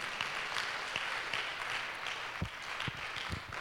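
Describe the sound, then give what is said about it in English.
A crowd of people clapping for the Lord, a steady, dense wash of applause with a few sharper, louder claps standing out near the end. “It's a good place to clap for the Lord, not for me.”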